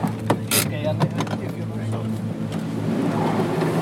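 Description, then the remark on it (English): A car drives steadily down an inclined underground tunnel, several hundred meters below the surface, toward a storage level for spent nuclear fuel canisters; its low engine hum drones evenly, with a few sharp rattles and clunks near the start before the rumble settles. “We eventually arrived at the storage level and got out of the car.”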